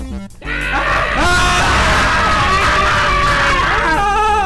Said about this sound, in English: Someone please fill up the dead air with something. I open the book of screams.